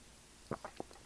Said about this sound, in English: I'm going to take a sip of my tea here, just one moment.